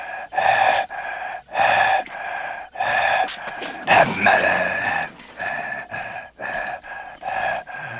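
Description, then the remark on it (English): Loud, ragged breathing of a heavy breather approaching a house, in rapid gasping bursts, each harsh breath rasping and strained, repeating in an uneven rhythm with brief pauses, growing more frantic midway. “In the POV of a heavy breather, we approach the house, and the breathing gets more and more ragged and disturbing to listen to.”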